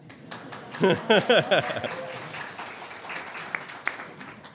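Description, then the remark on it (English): Scattered audience applause after a campaign video about Alberta's taxation and revenue shortage is played, a dense crackle of clapping that holds steady for several seconds, with a few bright whoops or laughing voices rising through it early on. “It usually gets raucous applause.”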